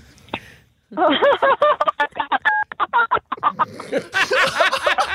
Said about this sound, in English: Sounds like R2-D2. Jeez, is there any phone signal there?